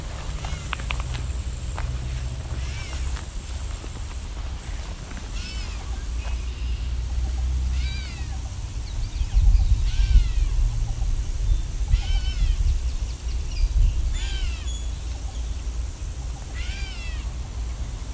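great catbird meowing calls

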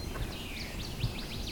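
northern waterthrush song

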